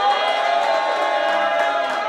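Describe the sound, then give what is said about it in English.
A crowd at a producer battle cheers and shouts continuously to vote for the winner, a loud, dense roar of many voices with whoops rising above it for a couple of seconds. “If you feel like … won this battle, make some noise.”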